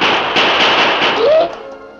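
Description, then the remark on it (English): A single loud gunshot, fired by the Lone Ranger at a panther, bursts out as a harsh, crackling blast of noise that rings on for over a second, then cuts off and fades, leaving a faint tonal ring. “Before the vicious beast could get to its feet, the Lone Ranger fired.”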